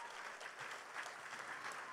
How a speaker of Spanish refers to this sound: Dale un aplauso al Rey.